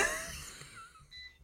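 A robot vacuum cleaner whirs along with a thin, wheezy motor whine and airy hiss. Faint high tones waver and fade over a second and a half, with no voices.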